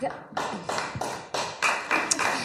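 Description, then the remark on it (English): Audience applause after a Conservative speaker criticises lawyers, a broad crackling wash that surges in a steady run of about eight pulsing bursts, fairly loud and carrying on without a break across the whole stretch. “So that's how a Conservative gets applause, by criticising lawyers.”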